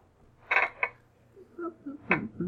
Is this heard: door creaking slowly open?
yes